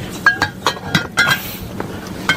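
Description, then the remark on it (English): Glass wine bottles clink together repeatedly in quick, irregular knocks, with bright ringing tones as they jostle against each other while being packed into a bag. “How many is that? 2, 4, 6 bottles of wine. I'll get another one in there.”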